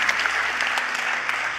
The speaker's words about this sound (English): We're clapping and we're excited. I'm glad for that, all right?